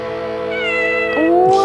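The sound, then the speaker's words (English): A small orange cat gives a single drawn-out, clear meow, its pitch rising sharply partway through into a higher, bright wail, with no talking over it. It is a parody studio logo modeled on the MGM roaring lion. “They do a joke where a little small orange cat meows.”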